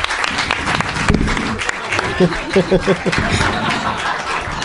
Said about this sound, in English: Yeah, put the microphone in the audience direction to get all that audience applause. You don't want to miss any of that audience applause.